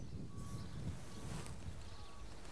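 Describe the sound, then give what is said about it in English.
Sand is poured into a fine glass jar for a demonstration of sediment layers, a steady, grainy hiss that lasts a couple of seconds, with a low rumble and a few faint thin tones underneath. “Now I'm going to pour in some sand.”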